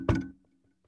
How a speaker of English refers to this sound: You got someone knocking on your door.